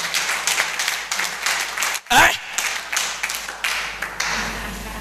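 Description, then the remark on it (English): A church audience claps steadily during a sermon for the full stretch, a dense, continuous patter of many hands, broken midway by one brief, louder burst before the clapping carries on. “Clap oh, clap.”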